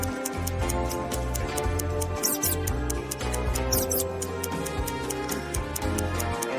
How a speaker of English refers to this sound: A mouse squeaks somewhere in the room. Inspect the apartment and help Sadfist catch the rodent.